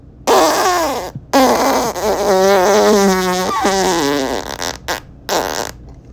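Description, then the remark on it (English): A loud, drawn-out fart sound effect with a wobbling, buzzy pitch, broken into several sputtering bursts over about six seconds and heard on its own. “And honestly, your team put up such a dud that I get to break out the first fart noise of the season.”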